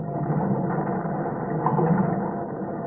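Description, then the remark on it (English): Muffled underwater rumbling of a sinking ship's boilers blowing up as cold water reaches them: a dense, steady low roar with faint crackling and splintering textures, swelling slightly midway, with no sharp separate blasts and no voices. “The cold water has reached her boilers. Do you hear them blow up?”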